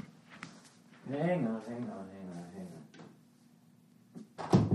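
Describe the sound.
A muffled voice talks briefly in the middle, then near the end a door is pulled shut with a single solid thud and a short rattle.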